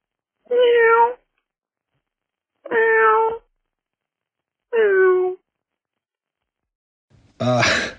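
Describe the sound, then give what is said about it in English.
A caller phoning in imitates a cat, letting out three evenly spaced, drawn-out meows followed by a harsher, breathier final yowl, with silence between each call. “That is apparently someone calling in to meow like a cat.”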